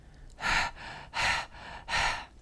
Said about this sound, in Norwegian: Når du gjorde bare litt, og det blir sikkert høy lyd, men det forskjell hvis vi bare puster med munnen. Og jeg velger nå å gjøre det fortere.